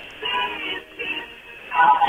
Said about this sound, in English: That's probably the best quality from a phone that we've heard. We can actually hear that it's music.